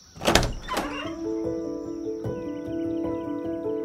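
doors being opened

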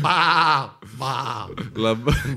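sheep bleating

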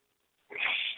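sneeze

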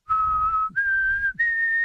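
person whistling a tune

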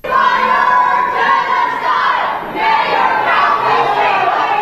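protesters shouting

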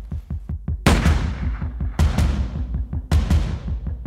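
gunshot

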